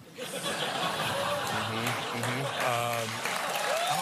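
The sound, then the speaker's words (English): A crowd claps steadily throughout, a dense wash of applause after a joke, mixed with scattered laughter and a few voices calling out over it. “And so it took them a while until maybe the applause lights went on, or maybe they told them to go ahead and start screaming and whatever.”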